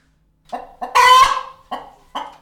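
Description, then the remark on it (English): A chicken clucks: a few short, throaty clucks with a louder, drawn-out squawk in the middle, and no voices. “And if we look at the next slide, we can hear what a chicken just normally sounds like.”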